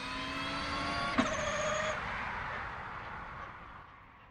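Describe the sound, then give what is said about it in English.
An electric car sweeps past with a broad rushing whoosh of wind and tyre noise, a faint high whine sliding down in pitch as it passes, then fading away. “Whatever the car, what you hear mostly is the wind noise, the aerodynamics noises.”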